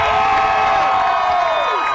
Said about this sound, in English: Well, I guess you can hear from the crowd reaction.